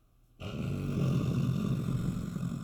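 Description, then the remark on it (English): A voice imitates a creature's low, rumbling, belly-based growl, its body rumbling against a stone floor. The growl starts abruptly and holds steady for about two seconds, a deep throaty vibration with a gritty, rolling texture. “And, this creature is growling, and it's kind of like a belly-based growl, so it comes from its body as it rumbles against the stone floor, like this sort of...”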